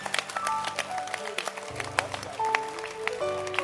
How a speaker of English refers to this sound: If you're clapping, you must clap well.